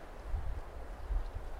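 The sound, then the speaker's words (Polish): Wind that has suddenly picked up outdoors in spring buffets a microphone with a low, rumbling roar over a steady hiss, swelling into two stronger gusts. It sounds fairly loud, and no one speaks. “A w międzyczasie zerwał się wiatr.”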